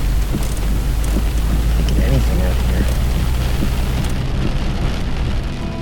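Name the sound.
rain falling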